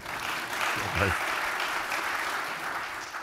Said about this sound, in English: So those of you watching this, the applause you hear, we're recording this live in the Traytel building of the Hoover Institution here on the campus of Stanford University